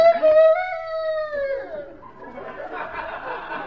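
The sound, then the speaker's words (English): A single loud rooster crow from a record played over a public address system at a chicken run, one long, bright, strained call that holds its pitch and then slides down, followed by a low murmur of voices and light laughter. “Say, lady, where's that rooster? I hear him, but I don't see him.”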